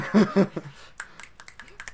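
A short burst of voice gives way to a quick run of about six crisp finger snaps, sharp and bright, coming in a slightly uneven rhythm.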